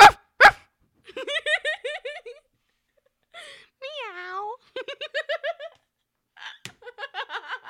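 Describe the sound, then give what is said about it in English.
A person imitates animals with their voice into a microphone, giving a couple of sharp bark-like yelps followed by several rapid series of rising, whiny meow-like calls, fairly loud. “You did not just bark into a microphone. I meowed too.”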